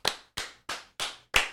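Five sharp hand claps in a steady, evenly spaced rhythm, fairly loud, each with a quick decay and no voices in between, clapping to welcome a new intern hired at Winners Win.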